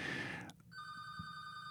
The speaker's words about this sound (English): And as soon as this telephone stops ringing in the background, we'll get on to step 10.